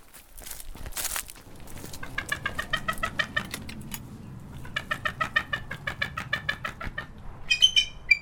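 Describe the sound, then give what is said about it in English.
A female bald eagle gives two bursts of rapid, high-pitched chattering calls, each a quick series of squeaky piping notes, clear over a low rustling background. “This is a bald eagle? A bald eagle is correct.”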